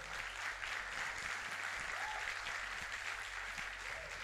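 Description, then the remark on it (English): An audience claps their hands in a steady, dense wash of applause that holds at an even loudness for several seconds, with no voices standing out. “Clap your hands, people.”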